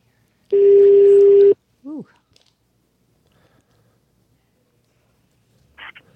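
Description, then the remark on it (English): A loud, steady electronic telephone tone sounds for about a second as a phone call is dialed, followed by a brief chirp and near silence, then one more short blip near the end. “Let me call you on the phone and see if it works better.”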